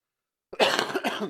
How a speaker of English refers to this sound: Excuse me. Coughed? I picked up, not a bug, but some sort of allergen that's been bugging the crap out of me.